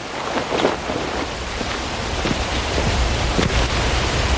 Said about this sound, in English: Listen to that. That can't just be water hitting water.